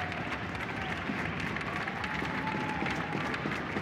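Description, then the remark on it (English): A steady wash of crowd applause at a sports game as injured player Vince Ryan is helped off after a collision, dense and even in loudness, with a faint held tone drifting underneath the clapping and no clear voices on top. “Well, nice round of applause here, and Francois Beauregard, the player who collided with Vince Ryan, helps him off as well, making sure that Vince knows it was an accident and no hard feelings there between either player.”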